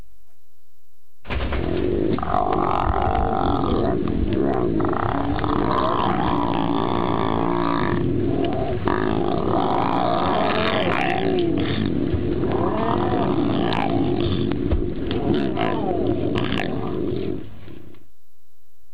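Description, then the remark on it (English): Continuous deep, rumbling growls from a lion growling over its prey, loud, rolling on for about sixteen seconds with snarling bursts and no talking. “So maybe you've never experienced this, but I want you to watch this YouTube video just to help you understand the sound that a lion makes as it growls over its prey.”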